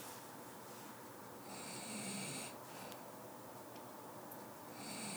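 A sleeping person snores in slow, rasping breaths, a rough buzzing inhale swelling up, fading, then starting again at the end, quiet under a steady hiss, with no talking.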